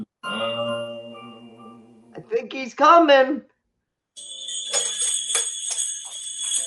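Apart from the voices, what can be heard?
jingling bells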